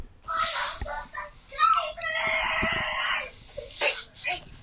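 A child screams in shrill, strained bursts, building to one long sustained shriek before shorter cries trail off. The voice is high-pitched and moderately loud, with no other talk.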